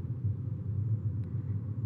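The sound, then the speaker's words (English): A steady, low engine and road rumble from inside a car creeping along a Texas highway in traffic at about 5 miles per hour, going down a slope, continuous and fairly quiet, with no voices and no distinct horns or passing vehicles. “Still around the same cars. And going down a slope now, slowly.”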